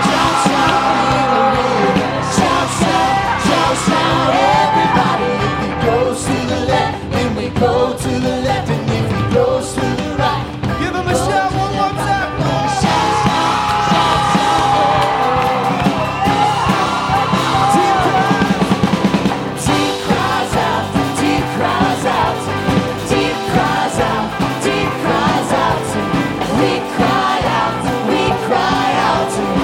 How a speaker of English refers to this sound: Get ready to shout. Shout, shout.